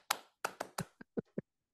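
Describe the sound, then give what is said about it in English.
Seven sharp hand claps in a quick syncopated rhythm at a wrestling show, the first few ringing a little longer, the last three shorter and crisper. Fairly loud, with no voices. “I like anything that claps like Dog Show. Like that.”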